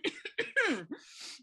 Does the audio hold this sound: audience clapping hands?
no